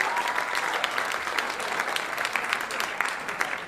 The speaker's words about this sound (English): You can clap.